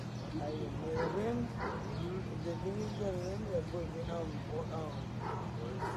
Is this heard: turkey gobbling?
no